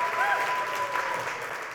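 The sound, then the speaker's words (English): An audience claps steadily, a dense, even patter of many hands that holds at a moderate level throughout, with a faint tone running beneath it. “The old covenant written on, you want to clap, clap.”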